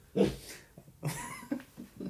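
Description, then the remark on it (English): A loud, startled gasp bursts out, followed by a few more breathy, voiced gasps and squeaks over about two seconds, with no talking. “How loud is that gasp going to be?”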